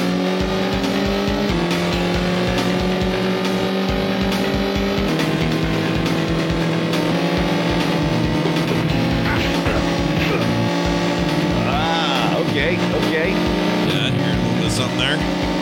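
Audio from Road Rash, a 1994 Electronic Arts motorcycle racing video game: a steady, loud engine drone shifts pitch with gear changes, joined by squealing tires, swooping chirps, and a few sharp thuds like punches landing.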